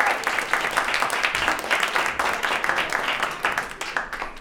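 An audience at a February 2020 live event organized by the Yale Alumni Fund and Yale Alumni Association at the Green Space in New York City applauds steadily for Robert Scaramuccia, dense overlapping claps forming a loud, continuous wash of sound with no talking over it.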